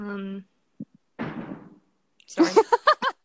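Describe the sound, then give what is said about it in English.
A door slams shut with a single broad, fairly loud bang that rings out and fades, preceded by a couple of small knocks, with brief talking before and after. “On that slam. On that door slam.”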